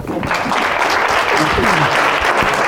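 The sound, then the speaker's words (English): A crowd applauds a speaker who shared a very personal story, steady dense clapping at a consistent loud level throughout, with faint voices mixed in beneath the noise. “Big round of applause.”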